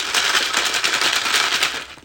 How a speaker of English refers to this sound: And now they're going to hear ice, a little ASMR.